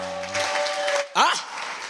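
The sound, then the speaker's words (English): A crowd claps steadily for the Lord, the dense patter running throughout with a sustained keyboard tone early on and a voice calling out over the applause. “Give the Lord a clap of me.”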